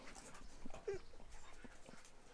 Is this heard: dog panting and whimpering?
yes